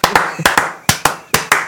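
A short burst of hand clapping: about eight sharp, loud claps in quick, slightly uneven succession, with no voices over them.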